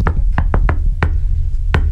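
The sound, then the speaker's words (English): Sharp knocks on a door tapped out in the familiar shave-and-a-haircut rhythm: a quick run of raps, a pause, then a final knock. No one speaks. “he was watching a show with the captions on and somebody knocked on a door like this.”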